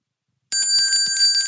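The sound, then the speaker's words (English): A bright bell chime starts suddenly after a short silence and keeps ringing steadily, with sustained high metallic tones and a quick, repeated striking pattern underneath. Loud and without any talking. “Can you play a bell chime for us, Max?”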